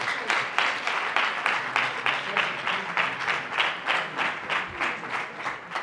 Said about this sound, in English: Please clap for our brothers.